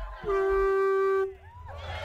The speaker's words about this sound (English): In Key West, Florida, known locally as the capital of the Conch Republic, people come out in droves to compete in the annual Conch Honk. Children make their best effort. They blow into one end of the huge shell that can weigh up to 5 pounds.